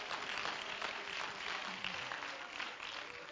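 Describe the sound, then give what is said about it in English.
An audience claps their hands together in praise of God. The many overlapping claps form a dense, steady wash that holds at an even, fairly loud level throughout, with no clear voices over it. “Oh, clap your hands and let's give Him praise right now.”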